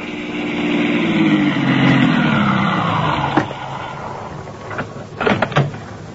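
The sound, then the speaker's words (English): A car engine hums and winds down as the car stops on Route 27A, then a few sharp mechanical clicks and clunks follow, like the car door being unlatched and pushed open as the driver gets out. No one speaks. “I stopped my car on Route 27A at about the point where Galen's men were wrecked. I got out”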